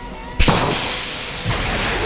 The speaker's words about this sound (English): A burst of air blew out the back of the balloon, blowing away the air bikes and sending the airship blasting out of the city.